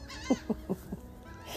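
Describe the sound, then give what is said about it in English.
Four short, harsh gull calls in a quick laughing series, each a little quieter than the last, heard fairly faintly over a soft background hush. “And the laughing seagulls fly on by.”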